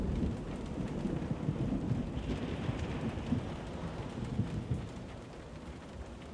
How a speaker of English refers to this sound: As the sun set, a storm blew in from the ocean and shook our hostel. The winds howled and the power went out.